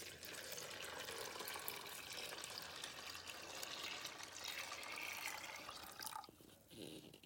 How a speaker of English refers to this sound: Okay, so I've got the split peas in the medium-sized aluminum pot, just breaking them up with my hands, and I've measured out 5 cups of water. So I'm just gonna dump the water in slowly.